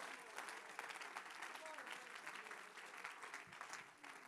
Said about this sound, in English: Clap your hands unto God.